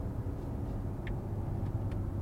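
A car engine drones steadily while being driven on a twisty Alpine route, a continuous low rumble with road noise heard from inside the vehicle, with a few faint brief chirps above it and no talking.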